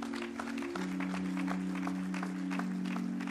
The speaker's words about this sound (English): Well, why don't you clap your hands unto the Lord one more time?